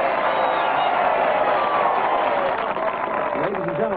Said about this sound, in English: Father Knievel! Evil runs out to the microphone as … encourages the applause.